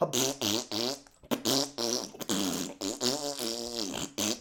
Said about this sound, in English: Yeah, and the amount of farts is probably in the thousands.